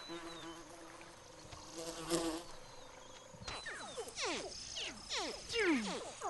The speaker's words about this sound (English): Crocodiles can have 80 hatchlings. And another batch is crying for her attention.